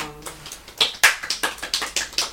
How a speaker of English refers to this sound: That was a full applause there.